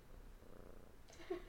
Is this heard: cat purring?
yes